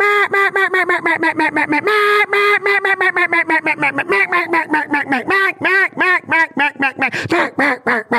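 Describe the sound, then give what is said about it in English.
A long, loud competition duck-call routine imitating a Mallard duck: dozens of sharp nasal quacks in quick rhythm, descending in pitch before picking up into faster choppy bursts toward the end. “To be have that kind of control of a call is badass.”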